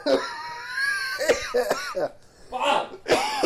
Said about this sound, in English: You know, cold season's coming, so I'm a little bit just coughing my lungs up. A little nasally.